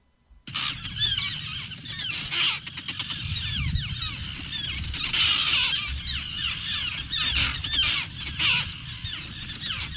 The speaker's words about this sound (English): Those are terns, very angry terns, recorded by Connecticut State ornithologist Margaret Rubega, who's with us today on the phone.